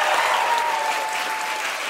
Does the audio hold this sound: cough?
no